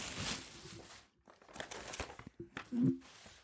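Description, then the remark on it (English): Close, crisp crinkling and rustling of tissue paper in several bursts as a present is unwrapped near a microphone, loud at first, then fading briefly before returning in scattered crackles, with a faint voice murmuring underneath. “I probably can't use, shouldn't use the tissue paper near this microphone”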